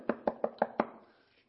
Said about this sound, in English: Do you ever have somebody walk up, knock on your door?